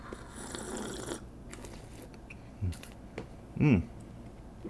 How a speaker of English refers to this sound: So here in the skull goblet that I found here in the abandoned castle, we're going to have a sniff and then have a taste.